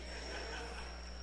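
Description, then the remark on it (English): A faint, steady high-pitched cricket trill runs continuously through the background over a low electrical hum, with no one speaking. “By the way, we're going to take a gun out and shoot a cricket.”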